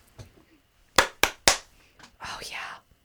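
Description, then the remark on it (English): Three sharp, loud hand claps ring out in quick succession, followed by a soft breathy whisper-like hiss and faint murmuring. “Makes your hands vibrate, makes the air around you vibrate, clears stuff away.”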